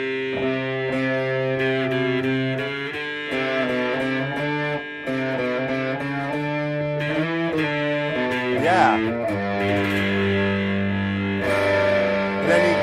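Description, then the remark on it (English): A distorted electric guitar rings out a sustained, overdriven C note and chords with a thick, buzzing tone, shifting pitch several times and playing alone at a steady, fairly loud level. “C note.”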